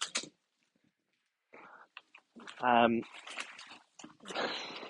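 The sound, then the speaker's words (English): Puppy noises: a short, high-pitched yelp rising out of scattered scuffling and rustling, with a few sharper squeaky yips around it, as four puppies tussle and attack a person's hands while their room is being cleaned. “There are four puppies all trying to attack my hands whilst I'm trying to clean their room.”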